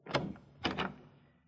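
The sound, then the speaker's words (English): Three knocks on a thick mahogany door, one then a quick pair, fairly loud with a dull, solid thud and short ring-off. “The receptionist was out, and I took a crack at the thick mahogany door.”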